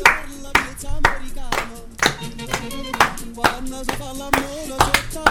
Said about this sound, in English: Good claps, guys. Good claps.